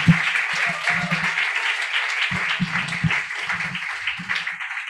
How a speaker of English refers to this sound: Give a warm round of applause for her.